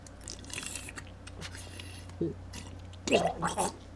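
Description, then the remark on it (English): Wet slurping of dirty water from the bottom of a cave being sipped, with soft squishy mouth noises and a short gurgle, ending in a louder burst of gulping and swallowing. “What's it sound like when you take a sip of that?”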